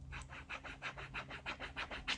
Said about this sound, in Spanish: Y ahora estoy abriendo mi libro de cuero negro, donde veo que nos quedan 796 días. Madre mía. Y en este momento voy a usar un boli de tinta negra para cruzar el día.